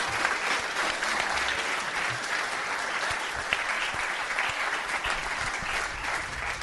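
A crowd applauds steadily, a dense wash of overlapping hand claps that holds at an even, fairly strong level for several seconds with no voices rising above it.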